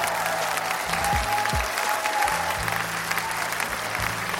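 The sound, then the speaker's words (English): A crowd applauds steadily, dense clapping filling the whole stretch at an even, fairly loud level, with a low hum and a few dull thumps underneath. “Let me, round of applause, please.”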